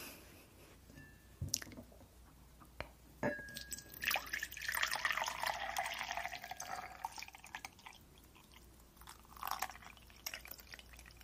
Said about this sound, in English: Have some warm water here, or hot water, I should say.